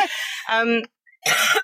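A woman coughs in a few harsh, throaty bursts: two back-to-back hacks, a brief pause, then one more strained cough.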